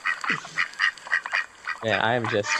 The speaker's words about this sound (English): What the heck is that? Oh, okay, never mind. That would be some ducks. Yep.